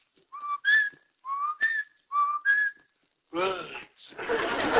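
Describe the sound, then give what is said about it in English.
A person whistles a birdlike two-note call three times in a steady rhythm, each phrase stepping up in pitch. It ends with a brief voiced burst and a rushing, breathy noise. “Who's making that noise? Oh, that's me.”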